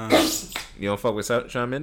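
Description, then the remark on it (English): A single loud sneeze bursts out at the start, then a man's voice speaks right after it. “Oh, bless you. Get it together,”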